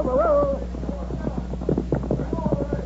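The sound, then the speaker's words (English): Rapid, uneven hoofbeats of ridden horses galloping away, a dense run of thudding clops carrying on steadily after a brief high tonal cry at the start, with a low rumble underneath. “Get on your horse quickly. Go.”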